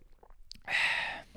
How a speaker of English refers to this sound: He goes, take a little sip of water real quick. Get the water. H2O.